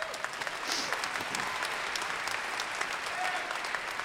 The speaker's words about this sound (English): That was spontaneous applause. That was not the automatons of my cult. That was real human beings appreciating you.